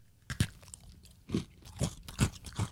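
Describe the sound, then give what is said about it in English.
Crunching of an old Oreo cookie, left unsealed since before COVID yet still crisp: a sharp first bite, then four more loud, dry crunches as it's chewed at an uneven pace, with no talking. “It's still crunchy.”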